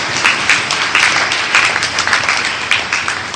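A crowd claps steadily for a few seconds, many overlapping hand claps forming a dense, fairly loud patter with small bursts of emphasis and no talking.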